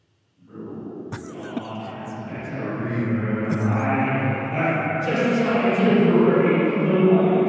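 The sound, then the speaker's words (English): A voice talking into a reverb microphone, smeared by heavy reverb, its words washed into an unintelligible, echoing drone that starts abruptly and swells slightly louder as it continues for several seconds. “we can actually understand when he talks into the reverb mic.”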